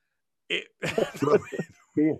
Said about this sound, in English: I tasted a little 99 bananas in that burp when we mentioned the Hamptons.